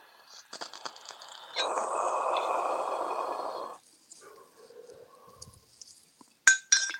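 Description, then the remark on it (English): Glasses clink together in a toast: one bright, ringing, sharp clink near the end. Before it comes a few seconds of breathy, rushing noise and some soft handling sounds. “I mean, cheers”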